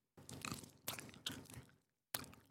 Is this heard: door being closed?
no